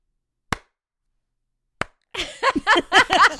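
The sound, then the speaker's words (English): Two sharp, isolated claps from a song ring out over a second apart against silence, then the busy music comes in with dense, rhythmic layered sounds. “No, it's just, it's literally just the clap.”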